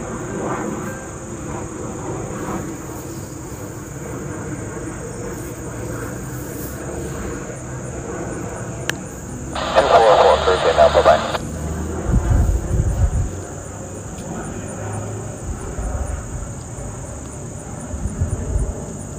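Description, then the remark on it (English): A jet aircraft, flight LJY369 on its way to Arnold Palmer Regional Airport, drones overhead with a low, steady rumble that swells slightly partway through, while a constant high-pitched insect chirring runs underneath and a short hissing burst breaks in midway. “There's a jet coming. We're going to try to get that on file today.”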